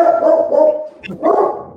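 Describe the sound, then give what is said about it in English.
A dog barks loudly, two drawn-out, harmonic bursts separated by a brief pause, with no talking over it. “My dog loves these rehearsals too.”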